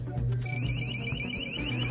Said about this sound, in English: They have their decision maker on one side. You can see that bright white LED. And then the other shoe on the other side has an audible alarm system built into it.